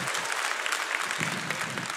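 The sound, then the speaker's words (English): A steady wash of audience applause, many hands clapping at once in a dense, even patter that holds at a fairly loud level throughout, with no voices rising above it. “Let's all join together.”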